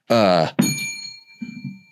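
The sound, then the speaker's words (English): A bell is struck once, its bright ringing overtones hanging and slowly fading. A short voiced sound comes just before it, and a quiet voice murmurs as the ring dies away. “I know, but after you rang the bell.”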